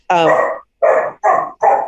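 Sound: dog barking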